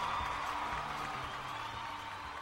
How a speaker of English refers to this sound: Hello. Wow, double applause. I know. And really? And they stopped again. I missed it. They stopped and then they started again.